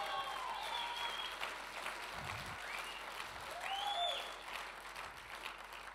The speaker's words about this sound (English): Come on, clap your hands, all you people.